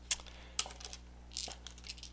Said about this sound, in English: One moment, I have to roll dice.